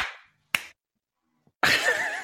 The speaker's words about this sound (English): Lost them. As soon as you clap, he goes away. What timing.